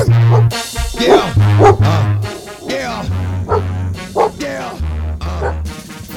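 Loud, rhythmic bursts of barking, likely voices imitating dogs, repeat in quick succession over a thumping bass line and music, with the barks punchy throughout.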